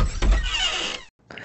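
A pantry door creaks open in one drawn-out, squeaky groan lasting about a second, fairly loud, then a brief silence before another short scrape begins.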